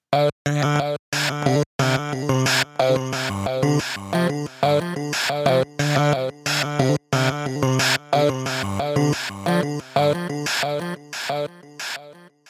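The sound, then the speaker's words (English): A bright melodic music piece whose notes repeat in rhythmic echoes, building a dense, steady pulse broken by a few brief silent gaps. No voices are heard. “And here it is with added rhythmic echoes.”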